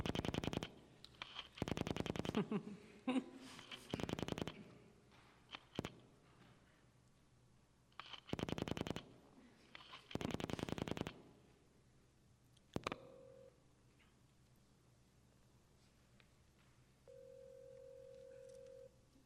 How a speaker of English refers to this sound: So Lil is calling Andy on the phone.